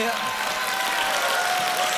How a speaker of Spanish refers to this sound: ¿Puede alguien aquí ponerse de pie y darle gloria a Él? Dale gloria con aplausos. Adórale con gritos de júbilo. Adóralo.